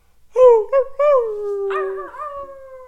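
A dog howls: two short rising yelps lead into a long, drawn-out wavering howl that slowly falls in pitch, with a brief second swell before fading out. No talking.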